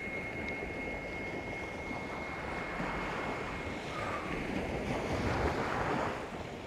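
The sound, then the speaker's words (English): Steady wind roars across the microphone while waves wash continuously onto a British North Sea shore on a blustery summer morning, a broad, dense rush of surf with gusts swelling and easing; a thin tonal whine sits faintly in the background. “It's a blustery summer morning on the British shores of the North Sea.”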